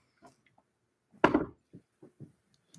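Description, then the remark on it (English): Dice rolled by the DM during a game session roll across a hard tabletop: one loud clattering impact, then a few quick, quieter taps as they bounce and settle. No one speaks. “That sounded like a dice roll to me.”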